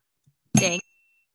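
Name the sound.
bell ding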